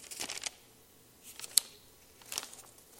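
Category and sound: household object, paper being handled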